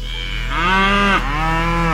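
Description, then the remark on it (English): A cow moos twice in quick succession, a loud, drawn-out low bellow with strong harmonics, alone with no talking. “Kixie, the Kix 96.9 cash cow, will bellow out a winning word”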